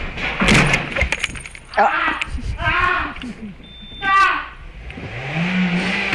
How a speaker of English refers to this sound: One of the first things I showed you was one of my all-time favorite clips, a man who is working in a garage, and then a car hits him.